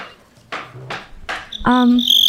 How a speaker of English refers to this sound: Oh my God, where'd those crickets come from?